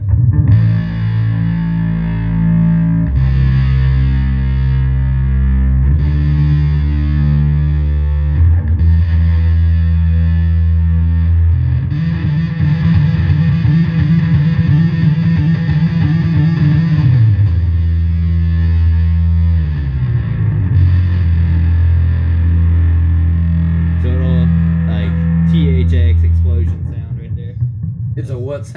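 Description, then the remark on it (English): A loud, distorted synth bass plays long, buzzy low notes that shift pitch in steps, with a throbbing, wobbling stretch in the middle and no talking over it. “THX explosion right there. Time travel.”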